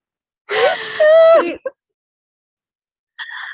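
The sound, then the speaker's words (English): Loud, heavy breathing into the speaker's face: a long raspy, wheezy breath with a slight whine, a quick puff, then a pause before another short breath. “breathing in my face”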